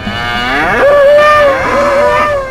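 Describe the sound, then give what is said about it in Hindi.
A bullock lets out one long, loud lowing call that swells upward in pitch and then holds steady for nearly two seconds before fading, as the bullocks suddenly stop, wag their tails and run off. No voices are heard. “और उसी वक्त अचानक बैल एकदम रुक कर पूंछ हिलाकर जोर से भागे।”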